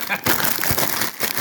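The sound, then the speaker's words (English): A packet of Seabrook's crisps being crinkled and handled, a dense, crackly rustle that runs almost without a break, with a couple of brief pauses, fairly loud throughout. “I'm sitting here with a packet of Seabrook's crisps”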